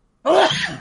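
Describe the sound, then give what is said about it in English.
A single sharp sneeze bursts out after a moment of quiet, loud and breathy, trailing off quickly. “Oh, but I sneeze and I get all kinds of shit.”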